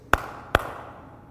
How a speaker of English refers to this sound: Do you remember that one? Clap on, clap off. The clapper.